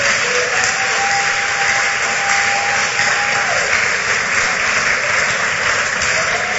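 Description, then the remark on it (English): An audience claps for Jesus in a dense, steady wash of applause lasting several seconds, loud and even throughout, with a faint sustained tone running underneath for part of it. “Clap for Jesus.”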